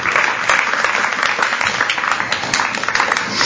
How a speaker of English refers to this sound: A round of applause for my volunteers. Wonderful.